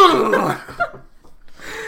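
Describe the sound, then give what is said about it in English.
A voice makes a short, loud, sputtering burst that imitates a wet dog shaking water off its coat, likened to Daniel Day-Lewis in his baptism scene, then trails off into quieter breathy noise. “Shaking off the water like a wet dog.”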